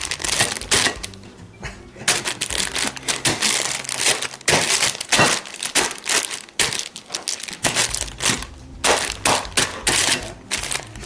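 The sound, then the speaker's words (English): Sharp crinkling and popping of a plastic bag of broccoli, carrots and beans for steaming being punched with holes, a rapid, irregular series of crackly jabs with a few brief pauses. “And we're going to punch holes in the bag.”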